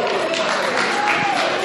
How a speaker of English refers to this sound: Let's keep it going until he's on stage. Just keep clapping.